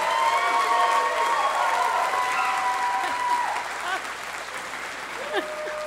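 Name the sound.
audience applause and cheering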